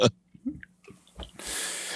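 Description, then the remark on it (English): A sneeze: a few short breathy catches and snuffles, then a loud, hissing burst of air that fills the final half second. There is no talking. “Oh, God bless you.”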